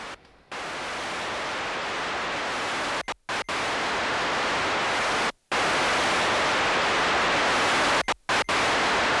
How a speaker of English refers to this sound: In the anticipated non-transmission of the desert event, the speakers will relay the sounds of white noise, further evoking the lost ocean.